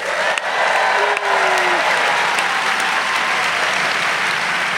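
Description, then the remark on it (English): A large live audience at the Norse Theater in San Francisco applauds steadily, a dense wash of clapping that stays loud and sustained throughout, with a faint whistle rising briefly above the crowd. “As you can hear, we are live. We're live at the Norse Theater in San Francisco in front of the largest crowd in GABFEST history.”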